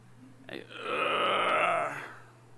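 A single strained, throaty groan from someone getting up out of a chair starts abruptly and holds for about a second and a half, rough and buzzing, then tapers off into quiet, with no talking around it.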